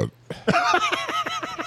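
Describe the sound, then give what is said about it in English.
A loud burp drawn out into a rough, pulsing belch, its tone wavering as though forming syllables, heard alone without other talk. “Yeah, that burp said. In burp speak.”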